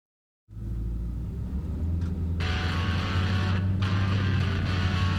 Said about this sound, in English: We follow a beat-up old Honda CR-V as it drives through the streets of Fredericksburg.